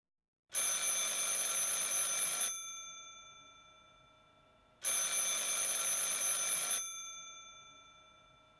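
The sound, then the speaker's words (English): An old-fashioned telephone bell rings twice, each ring a bright metallic trill lasting about two seconds and fading out, with a short pause between. It sounds clear, with no voices. “Before he could finally lay down for a deep, well-deserved sleep, Prosper had to phone his boss, Roy Olmsted.”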